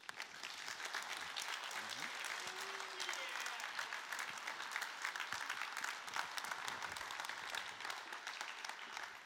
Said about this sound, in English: So if you would, let's stand, applaud what God has just done.